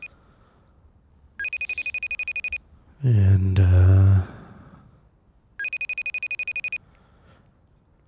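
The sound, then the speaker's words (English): A telephone rings twice in rapid trilling bursts with a long pause between, heard through a phone line. A person sighs or briefly speaks between the rings. “Yeah, it's just ringing.”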